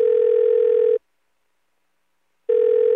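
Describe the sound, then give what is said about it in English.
A steady electronic telephone ringing tone sounds in two clear, loud bursts separated by a pause of silence, the line tone heard while a recorded phone call to Carol Burnett for her 90th birthday connects. “And it's my hope, as we celebrate her 90th birthday through this recorded phone call, that you will too.”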